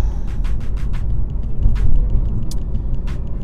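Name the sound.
road traffic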